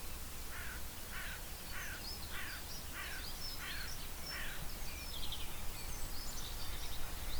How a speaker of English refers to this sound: Wood pigeon in the distance. Some kind of rook or crow.